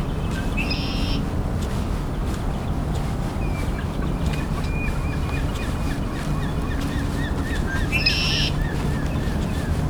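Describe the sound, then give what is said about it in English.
Herring gulls on the ice, fighting over fish, call out twice, loud and harsh, near the start and near the end, with fainter rapid calling between them over a steady rumbling outdoor background. “Oh, and there's a herring gull too.”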